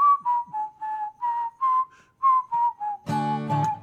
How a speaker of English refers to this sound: But I'm going to try to whistle as we sing this song in the intro parts, just to kind of have a fun little new twist to worship, right?